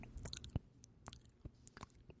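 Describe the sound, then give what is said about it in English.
Wet smacking and squelching mouth sounds, like someone chewing soft food with an open mouth, irregular and sticky over a couple of seconds with no talking. “Okay, now you're just sounds like you're chewing on a banana.”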